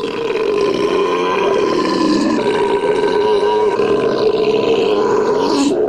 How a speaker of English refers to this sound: gentlemen, now the moment you've all been waiting for. The belching contest.